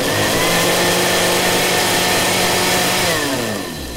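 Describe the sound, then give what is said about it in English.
A food processor whizzes toast with peanut butter, strawberry jam and tartar sauce for the Queen's Jubilee breakfast, with a loud, steady motor whine, then begins to slow and wind down in pitch near the end. No one speaks. “of the Queen having her Jubilee breakfast treat of toast with peanut butter, strawberry jam and tartar sauce whizzed in a food processor so she could drink it from her special American-style sports drinks hat during the rather tedious boat parade.”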